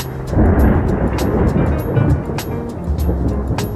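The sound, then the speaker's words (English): A loud, continuous thunder sound effect played from a button: a deep rolling rumble with sharp crackles scattered through it, filling the few seconds without a break. “I didn't get too crazy with the thunder sound this time around, but rest assured, still have full control of the button.”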